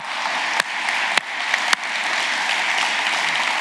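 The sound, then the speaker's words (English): An audience claps in a sustained, dense round of applause for the St. James's church team, steady and fairly loud throughout, with a few sharper individual claps standing out early on. “And finally, and we're going to have to go really loud here because they're not going to be able to hear us, a massive thank you to the St. James's team that are over there. Let's give them a round of applause.”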